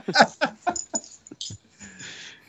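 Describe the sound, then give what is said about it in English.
A puppy vocalizes with a quick run of five or six high, sharp yips, then a breathy, drawn-out whine. No one talks. “I guess we're bumping up against the dog's time limit. Puppy doesn't like Brad Stewart. That's the signal.”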